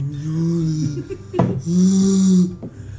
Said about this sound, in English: Are you okay? I'm yawning.